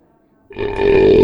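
human body sound, belch

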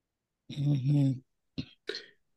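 human body sound, throat clearing

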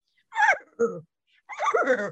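animal, horse whinnying

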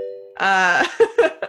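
sound effect, doorbell ding-dong chime

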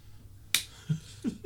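impact, high five hand slap

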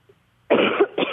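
human body sound, coughing

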